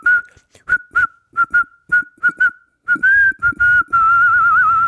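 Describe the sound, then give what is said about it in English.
A person whistles a slow tune, the notes broken into short separate phrases with brief pauses, ending in a longer wavering held tone. Fairly loud, with no talking. “the way you whistle it, it's a whole new song. It's 5 minutes longer because you can't whistle very quickly.”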